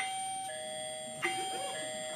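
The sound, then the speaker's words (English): A doorbell rings with steady, electronic-sounding chime tones. The pitch changes partway through, and a short, sharper strike follows. There is no talking. “Someone's at the door. Someone's at my door.”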